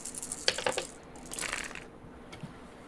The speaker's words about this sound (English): So it looks like you're going to roll 4, 5, 6, 7. All right. Dice. Plus your one stress dice. Plus my one stress dice. Everything I got on the table. Here it goes.